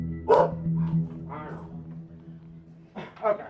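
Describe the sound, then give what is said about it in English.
A caged bulldog in a home barks a few times at a visitor, sharp gruff woofs spaced apart over a low steady hum, with a pause between the first barks and a final pair. “So I opted to just stand there and listen to his caged bulldog bark at me.”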